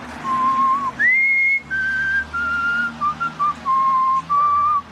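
A man whistles a slow, lyrical Wagner melody alone, with clear sustained notes rising and falling in a steady phrase, fairly loud over a faint low background hum.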